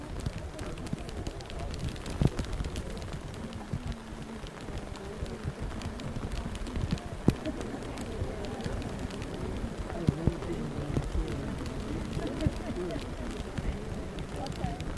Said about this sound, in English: So it's interesting that the rain is occurring on the only Wednesday in the last 20 years in which we've met outside in September.